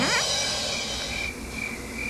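Crickets chirp in a steady, high-pitched chorus that runs for about two seconds, with no voices, a quiet stretch of insect noise at even loudness.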